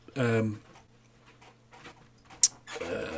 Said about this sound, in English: Fucking dog, Jesus fucking dog.